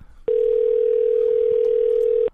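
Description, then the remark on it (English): A landline telephone ringing tone: one loud, steady, mid-pitched electronic hum lasting about two seconds, then cutting off abruptly, with no one speaking over it. “It's a landline. It's going to ring forever.”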